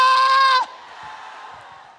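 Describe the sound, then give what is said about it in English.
A loud, sustained high scream rings out briefly, then drops away into a softer, diffuse wash of a church audience cheering and shouting together, as worshippers wave things and scream "Hosanna". “Come on, wave something and scream, Hosanna!”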